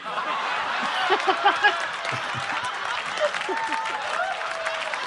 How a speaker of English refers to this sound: That applause break goes on for like 30 complete seconds.